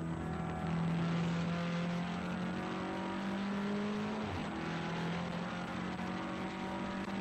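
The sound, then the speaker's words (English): Racing car engines drone loudly and steadily, their pitch holding high, briefly dropping partway through, then climbing back. No one speaks. “Just hearing the sound of engines running again is wonderful, isn't it?”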